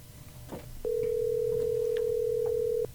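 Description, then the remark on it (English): An outgoing phone call ringing out: after a brief stretch of low background noise, one steady electronic ringback tone sounds for about two seconds at a constant mid pitch, then cuts off. “All right, let's give her a call.”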